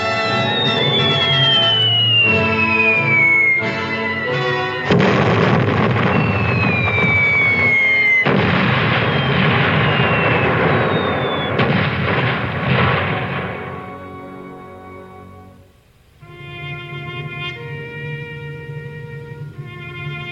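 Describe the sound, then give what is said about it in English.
Shells whistle down in falling, high-pitched glides over loud, rumbling explosions that burst again and again, then fade to a brief lull before a steady droning tone takes over. “Bombs bursting everywhere and shells whistling through the air like this.”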